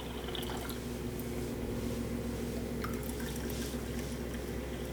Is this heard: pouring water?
yes